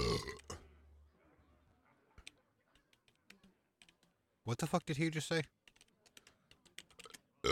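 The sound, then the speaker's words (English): A loud, drawn-out burp erupts for about a second amid scattered keyboard typing clicks, with a brief spoken remark. “Oh, I'm pregnant with burps.”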